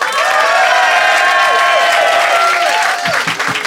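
A comedy show audience bursts into sustained applause to vote on which side is in the right, a dense wash of clapping with some cheers and whistles on top, staying loud throughout before thinning slightly at the end.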